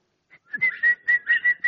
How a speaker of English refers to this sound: How many of you whistle?